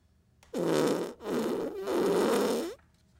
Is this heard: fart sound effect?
yes